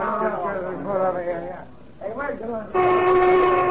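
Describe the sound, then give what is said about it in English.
After a few seconds of people talking, a factory lunch whistle suddenly starts blowing, a loud, steady, sustained tone that holds to the end. “The lunch whistle”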